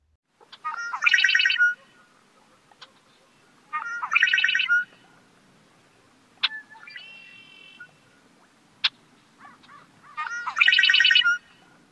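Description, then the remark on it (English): Red-winged blackbird songs, three loud buzzy trilling bursts spaced a few seconds apart, interspersed with sharp short call notes, clear against a quiet background with no talking. “I'm going to play one last track of the red-winged blackbird with a mix of songs and calls.”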